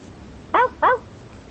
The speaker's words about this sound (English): I hear a dog barking.